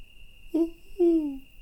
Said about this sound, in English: Ooh. That's a freaking hootie owl.